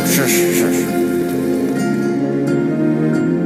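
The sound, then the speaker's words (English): A rain storm sound effect: a loud, steady wash of rainfall hiss that holds for several seconds, with a low tonal hum running underneath and a couple of brief sharper bursts near the end. “And even calmed storms.”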